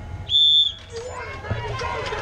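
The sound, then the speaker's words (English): A single sharp, piercing whistle blast lasting about half a second, loud, signalling the start of a 50-minute cycling race with 70 riders on the start line, followed by a low murmur of crowd noise and background activity. “Riders, you will start on the whistle.”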